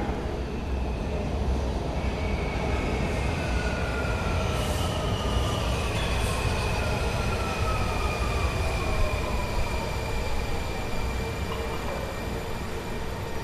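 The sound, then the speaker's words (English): A subway train at Washington National Airport, bound for Silver Spring, pulls in with a loud, continuous low rumble, its wheels squealing in long high-pitched tones that slide across the rails. The noise is steady throughout, with no talking. “Well, from that loud rumbling you just heard, you probably figured out that the trains arrive.”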